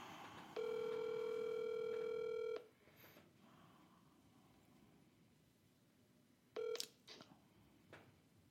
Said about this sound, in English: Dialing Florida.